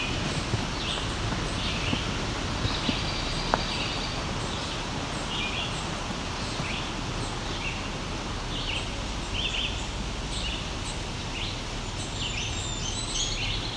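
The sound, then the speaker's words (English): A red-eyed vireo sings short, repeated phrases with brief pauses between them, fairly distant and soft over a steady rushing background, with a very high, thin chirp from another bird now and then. “There's a red-eyed vireo singing in the background here.”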